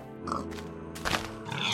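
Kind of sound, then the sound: animal, pig grunting and oinking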